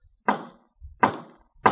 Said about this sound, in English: All you have to do is lift your arm and knock on the door.